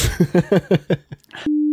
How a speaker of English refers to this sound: Yeah, cut that bit. I'll just beep it out.